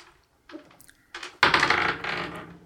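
Dice clatter across a hard tabletop as a roll for a wisdom saving throw: a few light taps, then a loud burst of rattling that tumbles and gradually settles, with no voices.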